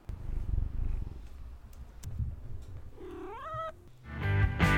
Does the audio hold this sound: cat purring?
yes